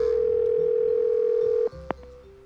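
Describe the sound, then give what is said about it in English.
A steady telephone dial tone on a line of poet John Giorno's 1969 Dial-A-Poem project hums at one flat pitch for about a second and a half, then cuts off abruptly, followed by a brief click and faint line noise. “In 1969, long before answering machines, voicemail, and instant messaging, the poet John Giorno recorded a bunch of poets, hooked up 10 tape machines to 10 telephone lines, and every time people called, they got to hear a poem.”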